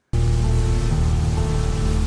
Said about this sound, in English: Wow, they have rain going.